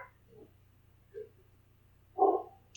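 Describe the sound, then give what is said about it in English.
A dog barks a few times at the speaker's roommates, muffled, with two soft yelps followed by one louder bark over a low steady hum. “He's barking at my roommates.”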